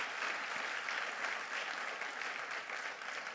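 An audience claps steadily for the Lord, a dense, continuous patter of many hands at an even, lively level throughout, with no voices standing out.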